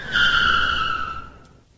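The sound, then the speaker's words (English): A car's tires screech loudly in a sustained, high-pitched squeal over a low engine rumble, holding for over a second before fading out as the car stops at a building's front doors, leaving skid marks. “Then I hear it, a car screeching to a halt.”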